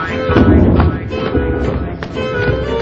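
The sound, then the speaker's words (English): Rolling thunder from a brewing storm around sunset in a Winnie the Pooh cartoon, a loud, deep rumble that swells and fades over a few seconds, with a couple of sharper cracks breaking through the low roar. “Storm brewing.”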